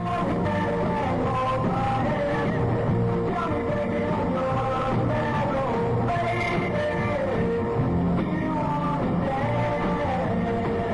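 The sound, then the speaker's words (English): A live studio crowd on the 1963 TV show Shindig screams and yells without pause, a dense, high-pitched wall of shrieking voices that stays loud and steady for the whole stretch, with no clear speech. “All the crowd in there, live.”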